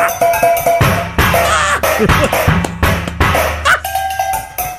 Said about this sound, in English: Sounds like you're banging on pots and pans.